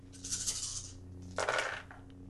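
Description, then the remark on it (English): Two black dice rattle and clatter across a hard surface in two short bursts, a longer tumble followed by a sharper second roll, over a low steady background hum; rolled for a melee defense of 2 in a tabletop game. “Yes, she has a melee defense of 2. 2? Yes, 2 black dice.”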